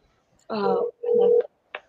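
telephone dialing and ringing

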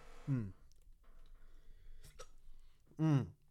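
hiccups

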